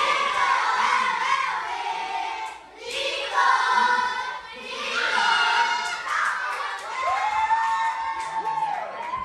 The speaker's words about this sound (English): Living on Earth's Bobby Bascom recorded these first and second graders cheering on the home team.